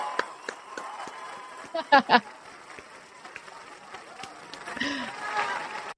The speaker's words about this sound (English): We gave extra applause because that probably was a rough thing to listen to. I didn't know how long it was going to run, to be honest, and it still has like another 36 seconds.